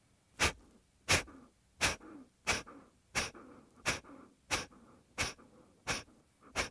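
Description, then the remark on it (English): Kapalabhati yoga breathing: rapid, forceful nasal exhalations made by pumping the belly, in a steady rhythm of about ten sharp puffs at roughly one-second intervals, each followed by a soft passive inhale, clear with no talking. “Inhale to a comfortable level, and we'll begin Kapalabhati breathing, which is a pumping of the belly.”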